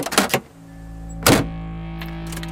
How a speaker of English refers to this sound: I climb into my car and head home.